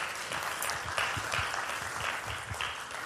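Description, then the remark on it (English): Steady, dense applause fills the whole stretch, a continuous wash of many hands clapping at a moderate, even loudness with no voices rising above it. “I want to applaud you for what you do.”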